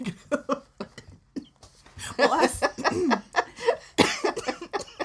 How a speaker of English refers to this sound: Sorry. I just gave her a coughing fit.